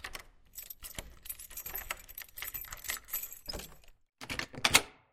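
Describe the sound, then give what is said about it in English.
Metal keys jangle and scrape in an apartment door lock with a rapid series of bright clicks and rattles, pausing briefly before a final louder clatter as the key turns. No one speaks. “Nearly 2 hours later, a key sounds in the door.”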